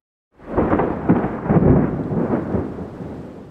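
A deep, rolling rumble of thunder builds quickly and sustains for a few seconds, loud, with a broad low roar that slowly fades near the end.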